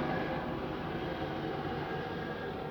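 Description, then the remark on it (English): A steady, rumbling roar of an airplane passing overhead in Washington, DC, holding an even level throughout with a broad, washing hiss and no voices. “It's a plane flying over top.”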